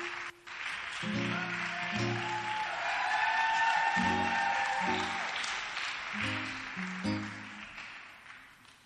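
A church audience applauds with dense, steady hand clapping that holds for several seconds as a woman comes up to share her testimony, with rhythmic low musical tones playing underneath before the clapping tapers off at the end.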